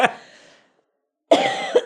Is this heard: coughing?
yes